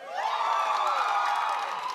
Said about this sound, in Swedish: Det är fusk, nu får du två församlingar som jublar.